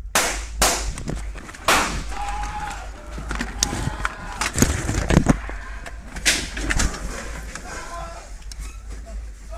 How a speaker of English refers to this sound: the gunshots ring out in two bursts of succession as people scream, trampling over other patrons in sheer panic